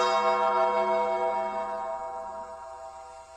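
sound effect, bell tolling

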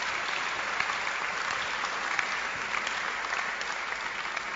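crowd, audience clapping hands

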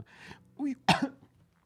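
human body sound, cough

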